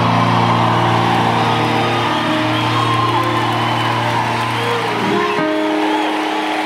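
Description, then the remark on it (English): A loud, dense wall of audience noise fills the space, many voices screaming, shouting and whooping together in praise over a steady low rumble, continuous for several seconds. “I'm sorry if some of you don't know how to scream and shout.”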